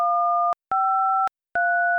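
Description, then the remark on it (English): Three touch-tone keypad beeps as the first three letters of a movie title, The Lion King, are entered into a phone menu, each a steady two-note electronic tone lasting about half a second, separated by short silences, with a slightly different pitch pair for each key press. No talking. “Using your touch-tone keypad, please enter the first three letters of the movie title you would like to see.”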